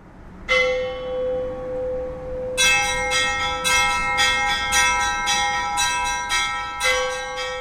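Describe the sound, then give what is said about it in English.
Large church bells rung by hand in a church bell tower, calling people to worship: one deep strike that hums and decays, then a rapid, uneven cascade of overlapping peals with long shimmering overtones, loud and with no voices. “You know, we're told that the bells are the voices of the angels calling us to worship, so it starts your sort of religious experience from even before you enter the church.”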